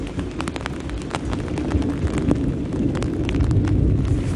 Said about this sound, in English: Canada is wild. There's the lightning that follows after... I mean, there's the thunder that follows after the lightning.